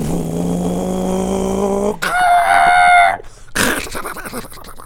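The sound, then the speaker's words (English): A voice imitates the squealing brakes of a motorcycle: a low droning hum for about two seconds jumps to a loud, high, sustained squeal lasting about a second, then breaks into a rough, noisy burst. “I was meaning it to go the brakes, you know, like, yeah. I mean, like squeal.”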